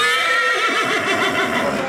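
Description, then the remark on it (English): A terrified horse neighs loudly, a shrill, quavering whinny that wavers up and down for about two seconds with no other sounds around it. “There was a wind kind of howling, and the snow is actually made of paper, so it kind of gusts it up into the air, and the horses were terrified.”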